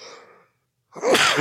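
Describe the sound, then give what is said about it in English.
A quick breathy intake, a brief pause, then one loud sneeze bursting out sharply. No one talks during it. “Bless you.”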